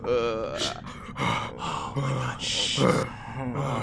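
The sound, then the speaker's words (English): Several voices make breathing sound effects, imitating many different creatures' pained, heavy breathing, overlapping in ragged gasps and groaning exhales that swell and fade in uneven waves, loud. “but you hear breathing coming from a lot of different places, a lot of different creatures breathing, and it is this pained, heavy breathing.”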